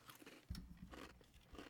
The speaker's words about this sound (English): All right. You're supposed to chew. Then I'm supposed to chew.